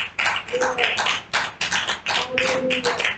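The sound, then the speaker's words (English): Steady, rapid clapping during a sermon that keeps going for several seconds, bright, sharp claps overlapping in a loud continuous patter, with a faint sustained tone or voice underneath. “I can clap. I don't know who's clapping, but go ahead.”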